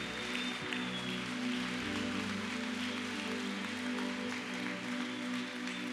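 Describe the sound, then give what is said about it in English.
An audience claps steadily for the Lord for six seconds, a dense, even wash of many hands with no pauses, while low sustained musical tones hum underneath. “Come on, give him a big, big, big, big clap.”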